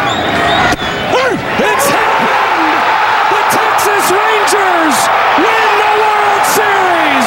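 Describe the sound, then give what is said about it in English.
A huge stadium crowd in Arizona roars nonstop, cheering and screaming loudly as the Texas Rangers win the World Series 4-1 over the Arizona Diamondbacks in Game 5, with individual shouts and whoops rising and falling above the dense, sustained wall of noise. “You hear the crowd just went absolutely crazy when the Texas Rangers won the World Series.”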